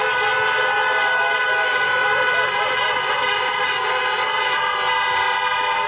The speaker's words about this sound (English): Yeah, Joe Biden gave his election night speech to a crowd of honking car horns there.